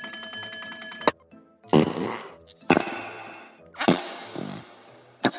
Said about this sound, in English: Found my fart putty!